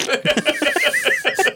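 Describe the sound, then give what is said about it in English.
A novelty fart sound plays from a Trump-branded perfume bottle, Success by Trump Eau de Toilette, when its top is pressed: a fairly loud run of quick, raspy, sputtering bursts with a wavering whistly tone on top, lasting about a second and a half. “Smell like you can smell like a fart. When you press the top, it just goes.”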